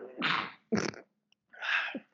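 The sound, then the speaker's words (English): A sneeze: a drawn-out breathy wind-up, then a sharp explosive burst, followed after a brief pause by another long, noisy exhale. No one speaks. “I was the preparation to prepare to sneeze.”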